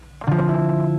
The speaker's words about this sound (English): I've got my funny ground hum again tonight.